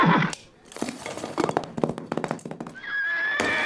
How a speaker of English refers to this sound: Whoa! That darn horse ain't seen no fence before.